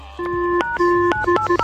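A quick series of electronic telephone dialing tones, four steady beeps of varying length with small clicks between them, clear, with no voices.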